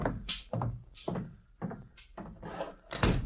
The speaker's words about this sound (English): Please step outside and close the door.